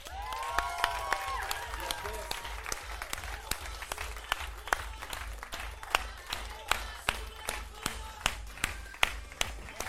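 A crowd applauds with cheers and whistling at first; the dense clapping gradually thins out into scattered, individual claps by the end.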